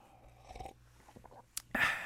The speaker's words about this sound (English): Let me take my sip. When I take my sip, it's very serious.